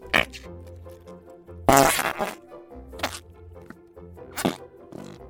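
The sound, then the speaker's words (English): Squelchy fart noises from fart putty being squished, a string of wet, buzzy blurts with a few sharper bursts, fairly loud, with no talking. “Want to hear this fart putty?”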